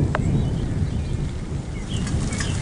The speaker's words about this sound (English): And here comes the rain. Ooh, it's almost like a summer storm.